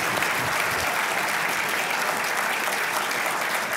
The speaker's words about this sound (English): You want to clap? That's good. Yeah, that's great. You clap, that's good. Excellent.